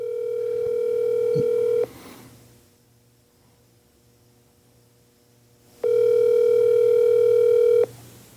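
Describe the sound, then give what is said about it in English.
A phone ringback tone sounds twice on a repeat call made because of an emergency, each steady electronic ring lasting about two seconds with a long silent gap between, unanswered, with a faint low hum underneath. “I'm gonna try him one more time, just because it's an emergency,”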